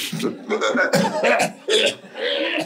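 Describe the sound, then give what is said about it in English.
A voice imitates the deep, hacking cough of village people in India cleaning their tongues in the morning, a rapid series of about five or six harsh, throaty bursts, fairly loud, with brief gaps between them. “And they make noises as if they're coughing from their intestines.”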